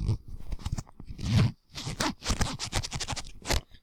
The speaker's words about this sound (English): My zipper's down. Thank you. I'm going to zip that up. Hold on a second.